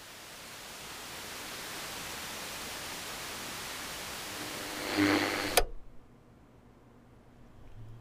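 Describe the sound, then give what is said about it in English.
Steady hissing radio static, picked up while scanning frequencies at random, fills the air for several seconds, swells briefly with a crackling burst, then cuts off abruptly, leaving only a faint low hum. “Today, some particularly interesting sounding static I came across when scanning frequencies at random the other day.”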